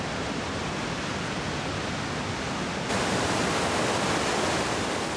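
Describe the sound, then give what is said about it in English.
A steady, dense roar of the Tuolumne River rushing down rocky granite cascades below Tuolumne Meadows, constant, growing a little louder about halfway through, with no voices. “So these two amazing forks converge right in Tuolumne Meadows, and they flow and meander peacefully through the landscape until they start to tumble down incredible granite escarpments.”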